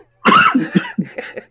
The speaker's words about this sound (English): What I really want to say to the masses is, you know, we're both sitting here hacking and coughing.